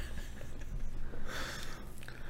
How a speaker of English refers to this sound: Breathing marathon.